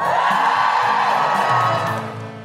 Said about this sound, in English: Hello, hello, hello, Bath. Are you ready for the Guilty Feminist? Give us a cheer if you listen to the podcast at home.